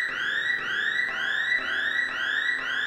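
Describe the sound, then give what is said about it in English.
An electronic alarm blares steadily, with a rapid rising whoop repeating about twice per second, loud, with no voices. “And remember, if you break these in half, there will be cause for alarm.”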